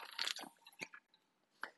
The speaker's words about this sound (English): Sorry, as I take a drink of water real quick.